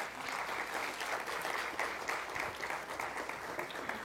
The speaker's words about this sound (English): And yeah, you can celebrate them. You can clap for them.